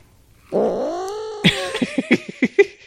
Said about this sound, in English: Thanks, Mom Cat. That's so good. Kitty sound.